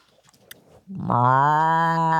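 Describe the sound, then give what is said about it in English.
A person imitates a cow, letting out a single loud, sustained low moo that swells in after a brief quiet, breathy lead-in and holds steady to the end. “You do it. You do a moo.”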